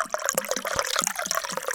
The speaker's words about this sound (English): as I don't know if you could hear, I have perfect pouring using my bartender speed pour technique.